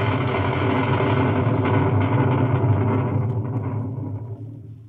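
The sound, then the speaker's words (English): A storm at sea at night around the ship Hispaniola: a loud, steady roar of wind and churning water with deep rumbling underneath, gradually thinning and fading toward the end. No voices. “By morning, the storm was over.”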